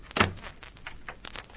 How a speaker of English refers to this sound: I'll shut the door to keep it out.